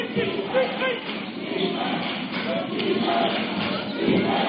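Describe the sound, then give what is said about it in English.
A loud, steady roar of the Laingsburg cheering section, on their feet at a basketball game against Jonesville, fills the scene, many voices shouting and yelling together without a break, with a few dull thumps mixed into the din. “Laingsburg cheering section on their feet loud.”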